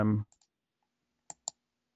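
A brief bit of voice at the start, then a few crisp computer mouse clicks: two faint quick ones, a pause, and two sharper, louder clicks close together, up close.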